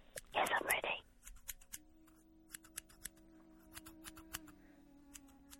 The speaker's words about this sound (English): Oh, you're cutting hair.